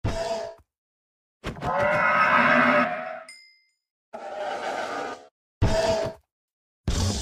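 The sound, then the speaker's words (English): A series of harsh, raspy grunting cries from a skeletal horse mob in the video game Minecraft, several bursts separated by short silences, with a faint metallic ding partway through. “That was the horse.”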